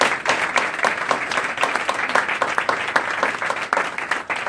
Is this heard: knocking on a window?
no